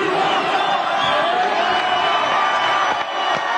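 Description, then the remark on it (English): A large audience cheers and screams continuously, chanting "We want Trump", a loud, dense roar of many voices with shouts and whoops rising out of it, sustained without pause. “We want Trump. That's what everybody's saying in the audience. I don't think I hear that back home. Everybody's screaming right now.”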